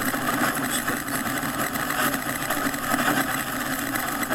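Steady, dense hiss of driving rain pelting a car with its windshield wipers going during an electrical storm, a constant loud wash of patter over a low engine rumble, with no voices.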